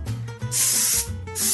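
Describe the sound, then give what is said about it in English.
Two loud bursts of cooking spray hiss in quick succession onto a metal half sheet pan with a 1-inch lip, each lasting about half a second, with a faint clatter of the pan in between and no talking. “And you're going to want to either butter it or spray it with some cooking spray, which I'm going to do.”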